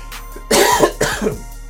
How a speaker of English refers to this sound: Sorry about all this coughing.